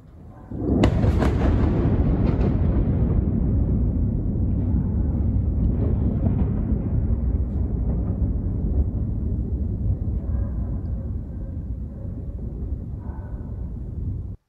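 A sudden, heavy missile explosion in Kyiv in the early hours of the morning bursts out and then rumbles on in a long, rolling low roar that echoes and slowly fades, as if reverberating between buildings, with no voices present.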